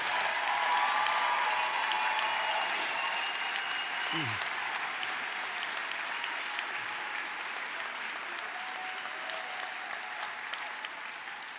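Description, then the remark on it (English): A large audience claps steadily in a sustained round of applause for all the winners, a dense wash of hand claps that holds for several seconds before easing off slightly toward the end. “Can we give one more round of applause to all the winners?”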